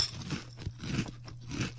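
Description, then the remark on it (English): Loud, close-up crunching of frozen, crisp cereal being chewed into a microphone, several bites in quick succession with crackly bursts and a low hum underneath, no talking. “You got to crunch into the microphone.”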